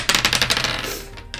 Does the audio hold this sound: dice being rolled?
yes